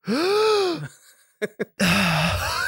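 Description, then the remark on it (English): A person makes dramatic, voiced gasping inhales, imitating a band: a long strained gasp, two quick catches of breath, then another drawn-out groaning gasp, loud and theatrical with no speech. “We couldn't just like open up the podcast. It's like we're breathing in the chemicals.”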